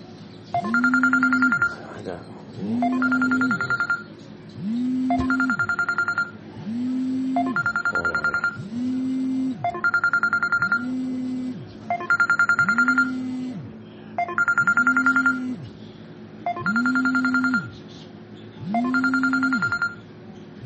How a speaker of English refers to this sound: Phone call, but sorry about that.